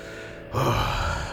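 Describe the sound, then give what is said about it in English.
A king breathes a single heavy, slow, calm breath while looking at the ground, a low airy exhale that swells up after a brief quiet moment and holds steady, fairly loud with no talking. “And you see him just kind of like breathing heavily, like calmly, like looking into the ground.”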